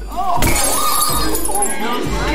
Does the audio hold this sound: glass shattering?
yes